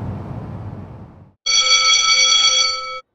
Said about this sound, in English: The nutrition bell rings